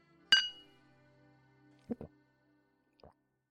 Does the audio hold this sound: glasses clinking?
yes